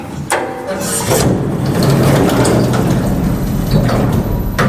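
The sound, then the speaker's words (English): Elevator doors slide shut with a rumbling scrape, followed by a steady mechanical motor hum as the locked lift starts moving up to the attic, loud, with no voices. “Now, if you will excuse me, I'm just going to take the locked elevator back up to the attic.”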